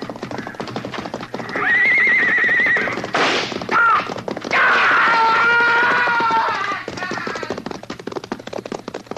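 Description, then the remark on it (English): Several horses whinny and neigh loudly, one shrill cry after another, over a dense, rapid drumming of many hooves as a herd stampedes. “He fell off right in front of the stampede. They went right over him.”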